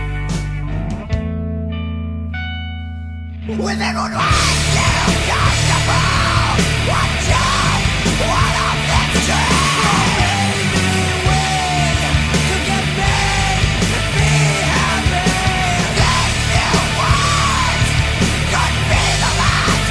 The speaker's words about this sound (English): Yes, singing and screaming.